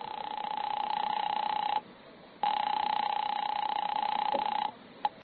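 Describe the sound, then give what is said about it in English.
A telephone in a drugstore being dialed: the line sounds a steady electronic tone that breaks off, resumes for a couple of seconds, then ends with a quick short blip. No one speaks. “I lammed out of there fast and ran three blocks until I found a drugstore with a phone.”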